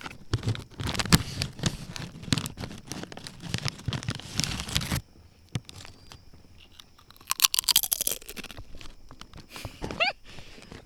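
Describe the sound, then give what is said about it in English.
Loud crunching and chewing of tortilla chips, with rapid brittle bites for several seconds, then quieter munching and a few more sharp crunches toward the end. No one speaks. “been eating up the tortilla chips.”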